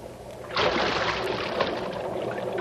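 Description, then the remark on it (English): A person drops about 12 feet into sewer water with a sudden, heavy splash, followed by loud sloshing and churning that continues for a couple of seconds. No one speaks. “Come on in. The water's fine. It's about a 12-foot fall. Stand to the right. I'm coming down.”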